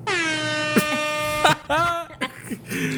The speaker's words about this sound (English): Oh, man, my air horn didn't work. Let me do that over.